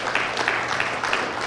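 A church audience applauds steadily during a Sunday service, a dense patter of many hands clapping at once, a continuous, fairly loud wash of claps.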